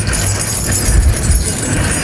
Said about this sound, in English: You guys have keys? Anybody got keys? I got keys. I got keys. That jingle, jangle, jingle.